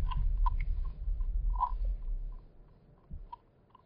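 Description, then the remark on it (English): Two hairy woodpeckers by a small cul-de-sac give a few short, sharp, high "peek" calls at irregular intervals, one louder than the rest, over a low, steady rumble with faint clicks. “Sounds like a hairy.”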